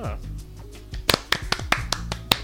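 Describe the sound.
A short burst of about seven sharp hand claps in an uneven rhythm, following a moment of voices, with a low hum of talk continuing faintly underneath, the speakers giving someone a clap.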